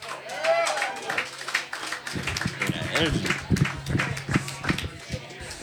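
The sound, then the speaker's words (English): An audience applauds the people coming through, with dense overlapping claps running steadily through the whole stretch and voices murmuring underneath. “Clap it up for you guys coming through.”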